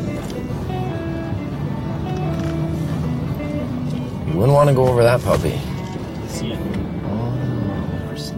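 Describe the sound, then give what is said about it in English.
An SUV's engine drones steadily as it drives up a mountain road, a low rumbling hum running the whole way through while a man talks over it. “But not before asking our sound man if we could use his SUV.”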